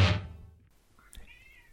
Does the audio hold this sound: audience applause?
no